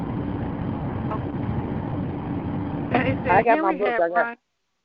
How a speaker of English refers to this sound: Hello? I don't have my book with me right now. We're still in the car.